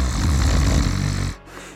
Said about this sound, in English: Yeah, plus grandma is snoring.